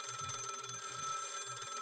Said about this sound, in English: Ring, ring. … residence.